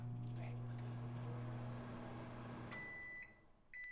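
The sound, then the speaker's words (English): A microwave hums steadily, then its bell is rung as a stand-in for a tool truck bell: a bright, high ringing tone that holds for about half a second, followed moments later by a second short ring. “Here, let's hit the bell on the microwave.”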